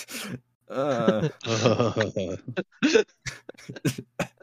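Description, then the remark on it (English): Strained, groaning vocal noises give way to a rapid series of short, harsh coughs, four or five sharp bursts in quick succession, fairly loud with no clear words spoken. “I think that would be you coughed just thinking about that.”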